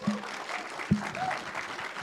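An audience at a film festival screening claps steadily, a dense patter of many hands at moderate loudness with a few sharper accents, and no one speaks over it.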